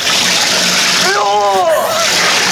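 A hose pipe, used as a prop sound effect, sprays water in a loud, steady hiss that fills the whole clip, while a brief wavering vocal cry rises and falls in the middle of the spray.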